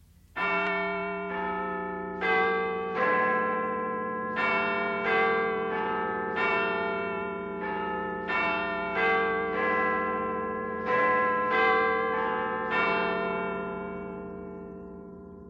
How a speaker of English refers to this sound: And while the chimes of the clock yet rang, it was observed that the giddiest grew pale, and the more aged and sedate passed their hands over their brows as if in confused reverie or meditation.